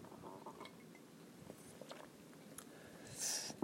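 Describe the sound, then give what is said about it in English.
Someone takes a quiet sip of coffee, soft mouth and swallowing sounds ending in a brief airy slurp, with no talking. “It was a good sip. Good old sip of coffee.”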